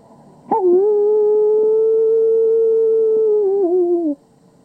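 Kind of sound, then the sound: animal, coyote howling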